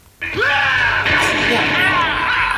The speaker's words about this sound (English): Ben's just angry. Ah! Werewolves! Ah! And he always likes yelling out, Stefan!